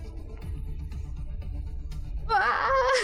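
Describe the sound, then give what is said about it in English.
During a tabletop role-playing game, a player voices a character rushing forward to attack: after a couple of seconds of low, muffled rumbling, a voice abruptly lets out a loud, wavering bellowing battle scream that holds for the final second. “We're gonna rush forward. All right, so rushing forward with a boy. Bellowing scream.”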